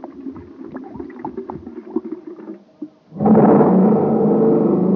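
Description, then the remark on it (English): A jet cycle engine sputters with an uneven low putt-putt on ordinary fuel for about three seconds, then, once super fuel is poured in, abruptly surges into a loud, steady, supercharged roar that holds to the end. “Wow, that jet cycle is supercharged now.”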